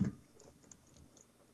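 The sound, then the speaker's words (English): Soft, quiet shuffling of tarot cards for a card reading, heard as a loose scatter of light ticks and papery flicks with a brief thump at the start, no voices present. “Okay, stand by for your Rebel card reading. The shuffling is happening as we speak.”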